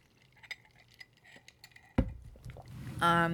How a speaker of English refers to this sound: But, so, first of all, let me get another sip of that. Covfefe.